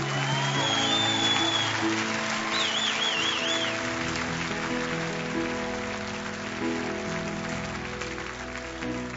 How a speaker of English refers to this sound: All right. Well, hey, let's give those who came forward one huge round of applause.